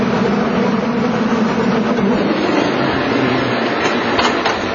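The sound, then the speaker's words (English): A steady, loud mechanical rumble and rattle of a cable car on the California Line running continuously along its track toward Grant Street in Chinatown, with a broad clattering hum filling the whole stretch and no voices. “These cars right here are part of the National Park System.”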